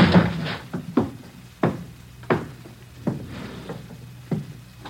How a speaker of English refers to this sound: I never thought I'd have to kick down a door to get you.